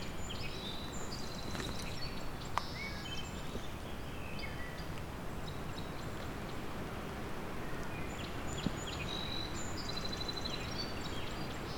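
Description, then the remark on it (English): A wood thrush sings flute-like, rising and falling phrases, repeated throughout over a steady rushing background of outdoor noise, with other faint birds and no talking. “It sounds like a wood thrush to me that's singing. It's got that pirouette.”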